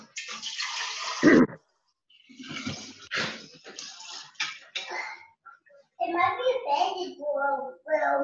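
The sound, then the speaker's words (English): Ginger juice pours into a jar in a splashy gurgling stream, stopping and starting a few times before a voice speaks over the end. “All right, so here we've got the ginger juice. I'm gonna pour it in a jar.”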